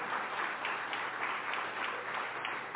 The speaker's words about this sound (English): Y'all definitely should clap for that. Thank you.